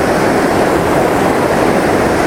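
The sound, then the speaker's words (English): A steady, loud roar of white water coming down through rocks, continuous and unbroken with no pauses, filling the whole scene. No one speaks. “Basically looking at a lot of white water coming down through rocks.”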